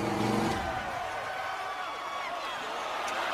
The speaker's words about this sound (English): That's Undertaker's bike, so Hogan is certainly not accustomed to running that motorcycle.